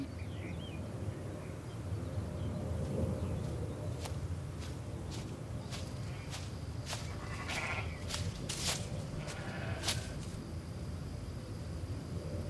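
Goats bleat in a noisy barnyard, their calls rising now and then over a steady low rumble, with scattered sharp clicks and knocks throughout.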